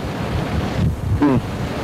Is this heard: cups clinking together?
no